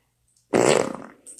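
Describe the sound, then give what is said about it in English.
A single loud fart erupts abruptly, a rich buzzing burst that rumbles for about half a second before tapering off, followed by a faint hiss. “That was almost like a burp from the ass.”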